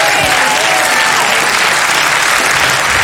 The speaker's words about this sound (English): Clap your hands to the Lord if you believe it.